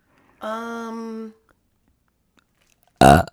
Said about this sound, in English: I don't think there's been a so-so'd yet that I haven't burped in.